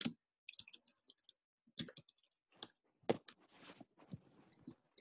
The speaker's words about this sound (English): Sorry, typing and computer things aren't working.